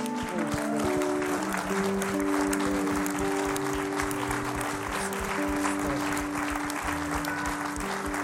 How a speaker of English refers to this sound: So on the count of three, everyone's going to stand and clap.